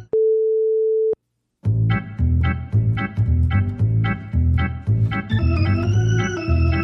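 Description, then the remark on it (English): A single steady electronic beep, a flat mid-pitched tone lasting about a second, followed by a short silence and then rhythmic, upbeat music with a bright melody entering. “Pause the audio at the beep, and the next time you wash your hands, you're ready to go with another episode.”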